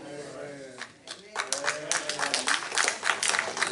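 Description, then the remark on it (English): A voice speaks briefly before scattered hand claps break out and quickly build into a loud, steady round of audience clapping that continues to the end. “You don't have to clap.”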